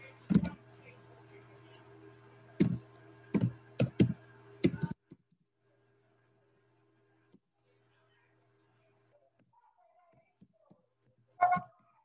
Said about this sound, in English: And currently I'm typing some correspondence since no one is talking to me.